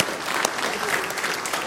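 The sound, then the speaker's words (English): Steady applause from an audience at Mercy Road, clapping for the launch of the new Hope City Church, a dense wash of many hands clapping at an even, sustained loudness with no voices breaking through. “You can clap because I wake up in cold sweats every night about it.”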